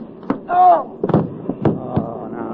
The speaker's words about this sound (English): Hey, son, you knocked out a cop. That's right.